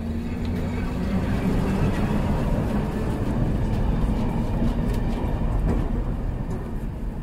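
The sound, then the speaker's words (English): A tram rumbles along a city street in Belgrade, Serbia, with a steady low roar and a faint electric whine, holding at a fairly loud, even level throughout with no voices. “Electric cars are a rare sight indeed on Belgrade streets, although the city does boast trolleys, electric buses and trams in its public transport mix.”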